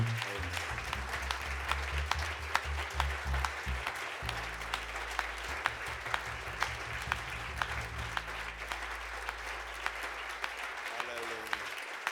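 An audience at an evening church service applauds a family steadily for about twelve seconds, a dense crackle of many hands clapping over a low, sustained organ or keyboard tone.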